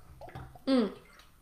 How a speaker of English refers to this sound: Let me drink a little bit of water.